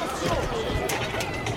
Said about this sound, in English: So that sounds like people clamoring for boxes and like, that's a terrorist attack.